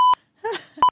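A smoke detector gives two short, sharp electronic beeps, one at the start and one at the end, with a brief muffled voice-like sound in between. It sounds a single beep, then waits before the next.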